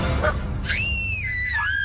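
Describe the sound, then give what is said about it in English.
An alien lets out a shrill, sustained scream with a wavering, gliding pitch, loud, with a little girl's high scream layered over it, against a low rumbling background with no talking. “Him and a little girl screaming.”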